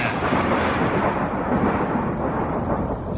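A loud rumble of thunder rolls steadily for about three seconds, deep and dense with a faint hiss on top, and no voices are heard.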